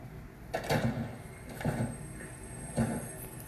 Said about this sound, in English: you broke the door.